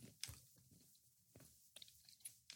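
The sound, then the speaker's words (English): Chewing of a Junior Mints peppermint crunch candy, with a few sharp bites and soft, moist mouth sounds at an irregular pace, heard alone without any talking. “Eat one right now. Junior Mints?”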